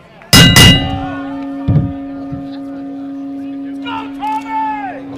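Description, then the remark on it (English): A boxing ring bell clangs twice in quick succession, loud, and its metallic tone rings out steadily afterward while voices briefly start talking near the end. “Ring the bell”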